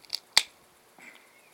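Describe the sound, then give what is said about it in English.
A can of beer is cracked open to pour into a glass: a faint metallic click, then one sharp pop, followed after a short pause by a soft, steady fizzing hiss. No one speaks. “Let's crack the can, get it out into my glass.”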